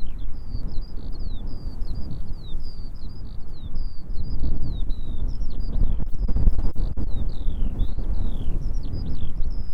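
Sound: wind blowing across microphone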